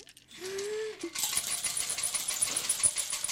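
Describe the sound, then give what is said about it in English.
Dice rattle and clatter continuously, fairly loud, as if shaken hard in a cup, preceded by a brief low hummed tone at the very start. “I got my dice. I got a dice. Get ready for a big old shakeroony.”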